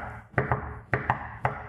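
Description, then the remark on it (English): A shoe knocks against a hard surface five times in quick pairs, sharp taps with a slightly hollow ring and no voices. “Why don't you use these? That was a shoe.”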